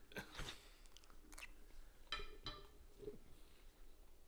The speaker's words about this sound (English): Chew it. Just chew it. Not that bad. Don't stop chewing it. It tastes like cat food. Don't stop chewing it.